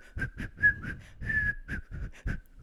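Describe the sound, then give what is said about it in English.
A person whistles a quick series of short, breathy notes, imitating a whistled message over the phone, with airy puffs between the tones and no talking. “Well, since they can whistle, that he doesn't need to drive them between the houses.”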